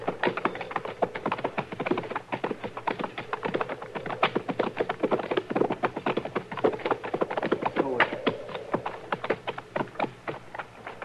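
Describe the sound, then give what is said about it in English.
Horses' hooves clip-clop steadily as several ridden horses walk together, the sharp knocks overlapping in a busy, uneven rhythm throughout. “All right, we'll ride up to them and look it over from there.”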